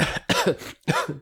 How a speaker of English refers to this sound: I'm sorry. I've been coughing ever since I ate them. It's from all the Grinch hair on it.